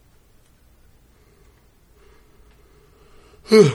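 yawn

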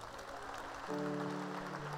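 audience clapping

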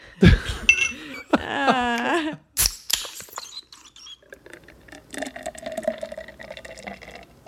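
glasses clinking

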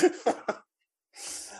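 cough

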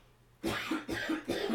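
cough

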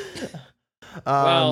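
yawn

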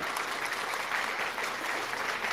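applause sound effect

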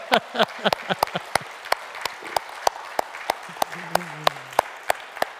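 audience applauding standing mothers

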